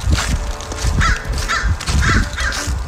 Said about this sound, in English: He's being followed by like so many birds. I don't know what's going on there, but it seems like you were getting trailed.